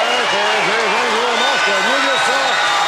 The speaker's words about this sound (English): Man, the crowd was really hot for that, sort of drowning out Angelo Mosca.